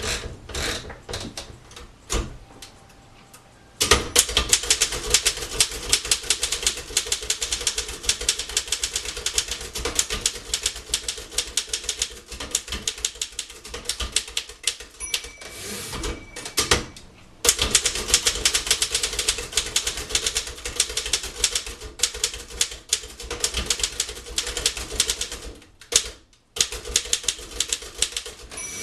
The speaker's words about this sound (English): I'm going to make my grocery list for the recipe of porridge with my typewriter.